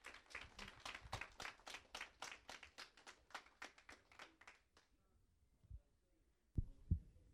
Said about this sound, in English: So a round of applause for these students.